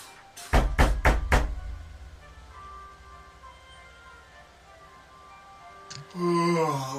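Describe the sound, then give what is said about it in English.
Four loud, heavy fist thumps on a door in quick, even succession, followed by a few seconds of quiet room tone before a voice starts speaking at the end. “I take my fist and go.”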